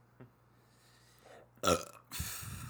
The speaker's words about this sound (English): Nice burp. I love it.